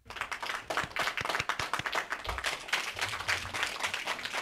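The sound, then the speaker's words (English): A canned applause sound effect, played as a drop from one of two applause buttons on a show's soundboard: a crowd's dense, crackling clapping that runs steadily for about four seconds at an even, moderate loudness, with no voices over it. “Of all the drops he has two separate applause buttons.”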